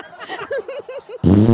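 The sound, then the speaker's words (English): A person blows a mouth-made fart noise, a few short voiced sputters followed by a loud, sustained buzzing raspberry, with no other talking. “I was going to make a fart noise.”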